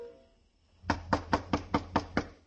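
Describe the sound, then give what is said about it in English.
Seven quick, evenly spaced, sharp knocks on a locked door on a street under the bridge of the New York, New Haven and Hartford Railroad, after a brief quiet moment, with no voices present. “Right now it was a street where Paul's murderer might be waiting in a dark room behind a locked door, waiting for a knock that had to come.”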